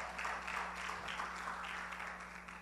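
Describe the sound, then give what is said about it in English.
A crowd applauds steadily for a few seconds as a volunteer comes up, a dense, even wash of many hands clapping with no pauses, over a faint low electrical hum. “Can we put our hands together?”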